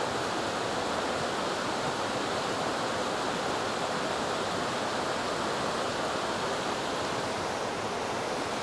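flowing river

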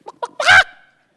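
chicken clucking

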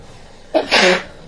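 nose blowing

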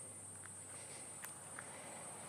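cicadas buzzing

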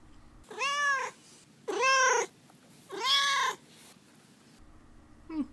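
cat meowing and purring

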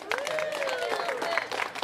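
audience clapping

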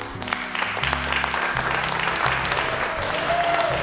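audience applause

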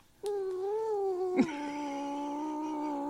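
cat meowing

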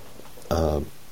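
cough

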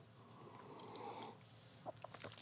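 sipping a beer

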